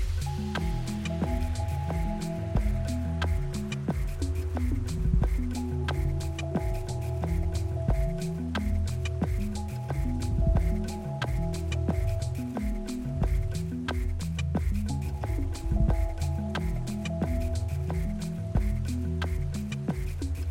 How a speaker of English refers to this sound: And so then the beat is not only the drum kit that is making it, but it's water itself modified using the help of technology. And so we are dancing to the rhythm of water.